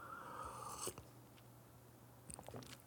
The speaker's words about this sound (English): Let me have a sip of coffee. My goodness.